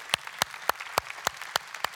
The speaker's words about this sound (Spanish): Y si tú invitaste a alguien, si tú trajiste a alguien, sobre todo personas que no conocían a Jesucristo como su Salvador personal, yo quiero darte un aplauso, porque muchas gracias.